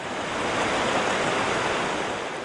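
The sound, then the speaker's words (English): Steady roar of ocean surf at the mouth of the Columbia River, where the 3-mile-wide river spills into the Pacific Ocean between Oregon and Washington: a broad continuous wash of breaking waves that swells slightly and stays loud throughout, with no voices present. “It's 3 miles wide right here, where the river spills into the Pacific Ocean between the states of Oregon and Washington.”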